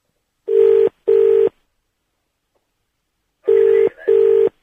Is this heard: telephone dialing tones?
yes